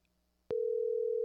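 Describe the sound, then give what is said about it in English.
After a moment of near silence, a click gives way to a loud, steady telephone ringing tone that holds without a break to the end, like a call waiting to be picked up. “It's ringing. That's a good sign.”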